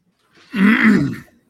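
A single rough, drawn-out cough after taking a hit of weed, a raspy throaty burst lasting under a second, with no talking around it.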